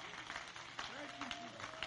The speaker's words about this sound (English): Hallelujah. Come on, clap your hands and let's give praise to the Lord.